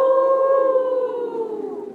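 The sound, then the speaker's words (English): A person howls like a wolf: a single loud, sustained voiced tone that holds steady, then slowly slides lower in pitch for about two seconds. No other talking. “Howling like a wolf. Let's all do it.”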